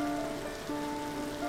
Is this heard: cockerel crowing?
no